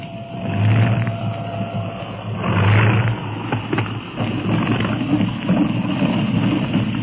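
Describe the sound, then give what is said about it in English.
A propeller plane's engine drones steadily as it comes in to land, swelling twice with a deep throbbing hum, then a few sharp bumps and rattles as it touches down and rolls on. “They probably think a lunatic is flying this plane. Hold tight. I'm setting her down.”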